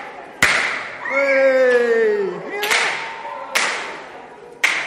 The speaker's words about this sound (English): Eh? We got party poppers.